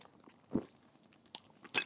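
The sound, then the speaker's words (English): Biting and chewing of a marshmallow-flavored candy: a soft crunchy bite, then a couple of sharper, wet mouth sounds spaced apart, with quiet pauses between and no talking. “I can't just chew this.”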